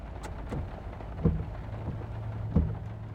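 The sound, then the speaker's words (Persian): Light rain begins pattering on a car, with a few sharper drops tapping against a surface over a steady low engine hum inside the vehicle; no one speaks. “بارون شروع به باریدن میکنه.”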